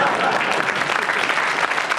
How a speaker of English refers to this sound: Short pause while I cancel that round of applause in that case.